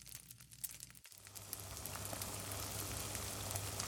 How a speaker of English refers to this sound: Isn't this triad on my stove beautiful? Pot number one, sizzling blood sausage.